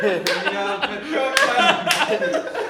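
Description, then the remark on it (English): A few sharp, loud hand claps, made to spike the audio as markers for editing cuts, spaced irregularly, each a bright instant crack, cutting through ongoing chatter and light chuckling from people in the background. “for the sake of efficiency, whenever we got cuts, we clap so it'll spike on the audio.”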